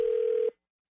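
outgoing telephone call ringing

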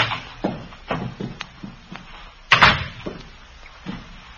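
door being pushed open

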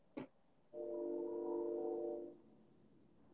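train passing

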